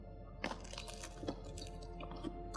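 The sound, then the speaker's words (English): Crunchy chewing of a BLT sandwich with aioli, several crisp bites and crackles in an irregular rhythm, loud with no talking. “You know, like a sandwich when you eat it, you can't talk?”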